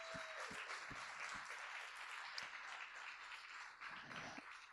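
A crowd applauds steadily for several seconds, a dense wash of many hands clapping at once with a few sharper individual claps standing out, loud and continuous throughout.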